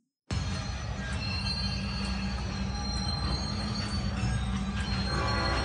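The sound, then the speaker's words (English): A train rolls steadily along the rails, a continuous low rumble with high metallic squealing and hiss from the wheels, loud from start to finish, with no one talking. “Train's moving.”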